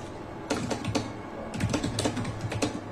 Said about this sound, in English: Harder typer than you. Much harder, actually. That's like, it's like he's trying to be threatening through his typing.